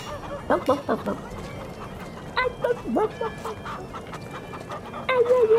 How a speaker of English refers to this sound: What are you doing to that chicken? You don't want to know.